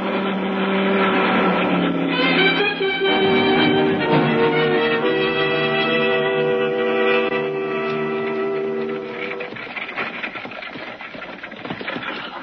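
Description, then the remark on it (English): A patrol car engine drones steadily and fairly loud, its rumbling hum shifting in pitch as the car approaches with its spotlight, then easing slightly toward the end. No one speaks. “The car is coming. Get down on the floor. The car approaching at the spotlight. It's a patrol car.”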